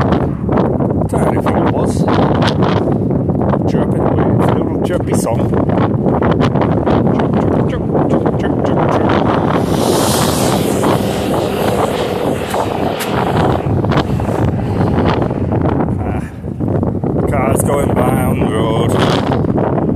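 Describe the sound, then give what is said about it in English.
Strong wind roars and buffets the microphone outdoors while someone walks, a loud, steady rush with gusty thumps and crackles that barely lets up, broken only by one brief dip. “Really feel like walking back in this wind, or I need to, so I need to get back.”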